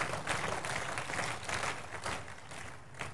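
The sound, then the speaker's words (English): An audience claps for Jesus together in a dense, continuous wash of applause, many hands overlapping into a steady crackle that holds at an even level for a few seconds, with no voices. “Are we clapping for Jesus?”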